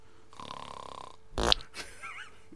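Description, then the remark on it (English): A loud, buzzy snore drones for about a second, followed by a sharp rough burst and a short warbling, whistly tail, with no talking. “He snores like your mum.”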